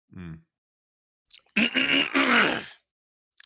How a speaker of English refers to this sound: Sorry, I just had to clear my throat.